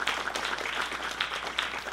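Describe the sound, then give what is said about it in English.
A crowd applauds steadily as a clap offering to God during a sermon, many hands clapping in a dense, continuous patter with no pauses or voices standing out over it. “So give God a clap offering.”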